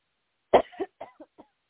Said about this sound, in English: Now take a deep breath and cough all of that out. Let it all go. Let every bit. Take a deep breath and cough from your gut and let it all come out.